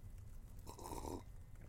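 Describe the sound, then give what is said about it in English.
A single soft slurping sip of tea from a cup, lasting about half a second and quiet, with no one talking. “I haven't taken another sip. What is this life? Okay, sip.”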